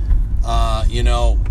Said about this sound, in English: And it's funny, I get in the car, driving to work, probably like many of you, I don't know